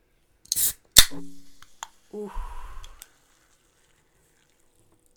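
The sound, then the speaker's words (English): A short hiss and a sharp click as a can of Good & Gather Ginger Peach Sparkling Water is cracked open, followed by a brief fizzing rustle, then a voice gives a short exclamation. “Well, you guys heard that bubbly?”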